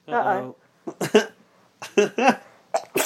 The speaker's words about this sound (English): Oh, I'm going to sneeze now.